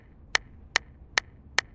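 Four sharp, loud hand claps in a steady, even rhythm, each a crisp snap standing out against an otherwise quiet background with no voices, as a teacher claps her hands to break the silence of a class.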